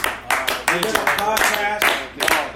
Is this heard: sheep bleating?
no